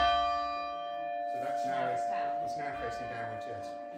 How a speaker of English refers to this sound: It's also been lovely to see that some of our challenging children, those with special educational needs, have absolutely shone this week. They've thoroughly enjoyed the bell ringing, and it's been wonderful.